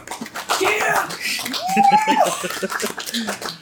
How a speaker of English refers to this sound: The crowd cheers as your friend and fellow tenant mate takes the stage.